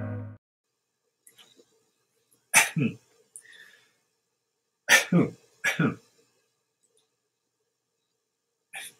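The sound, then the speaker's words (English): Three abrupt, explosive coughs or sneezes burst out, one alone and then two in quick succession a few seconds later, separated by near silence and faint small clicks. “And I think I was going to cough or sneeze. I don't know.”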